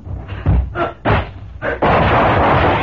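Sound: gunshots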